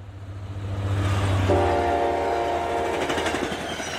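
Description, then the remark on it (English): A train rumbles steadily, and partway through its horn sounds a sustained, loud blast that carries on over the rolling clatter of the wheels. “Just 4 weeks later, after a long journey in a carriage, a train, a ship across the Pacific Ocean, and another train across all of America,”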